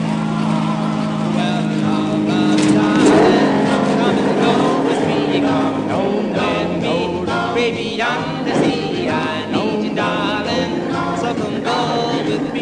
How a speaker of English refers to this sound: Let me drive. Takes a lot of strength to press this clutch. This car could get away from you.